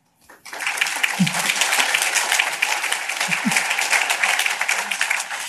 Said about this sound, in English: 300 of those families have completely graduated off subsidy. Another round of applause for that.